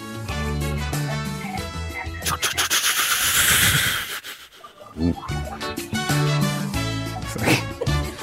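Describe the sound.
Someone imitates a helicopter with their voice as chopper number three in a round of helicopter impressions, making buzzy, rhythmic chopping sounds broken by a long breathy hiss in the middle, fairly loud throughout the eight seconds.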